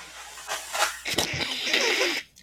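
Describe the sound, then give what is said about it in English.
Someone blows their nose into a handkerchief: a couple of breathy puffs, then a sharp burst leading into a long, rough, hissing blow that cuts off abruptly. No one speaks. “Just blow your nose in okay, it.”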